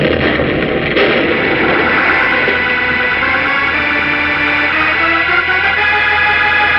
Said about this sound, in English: As Superman wrenches the control dial from the rock wall, a terrific explosion, seeming to start somewhere deep inside the massive concrete oven on which the globe stood, erupts and blows the entire peak of the mountain toward the sky,